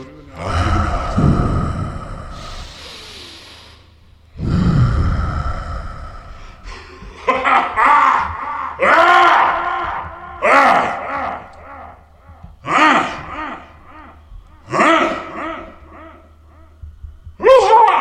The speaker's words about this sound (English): Wait, we gotta do the breathing. And through the nose.